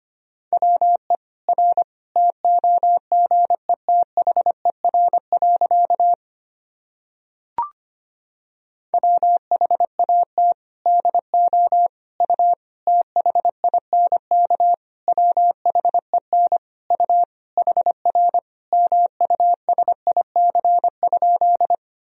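Rapid Morse code at about 25 words per minute sending practice sentences built from the top 300 words and abbreviations: a single steady mid-pitched tone keyed in quick short and long beeps, broken by a brief pause and a soft click partway through.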